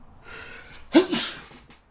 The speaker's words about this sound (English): I was hoping to have muted that or paused it or something, but that was real raw audio footage of me sneezing.